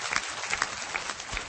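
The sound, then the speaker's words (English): A church audience applauds steadily to honor guests introduced by the pastor, a dense wash of many hands clapping at once with no pauses, holding an even moderate level throughout and no voices coming through. “So give him a big hand today”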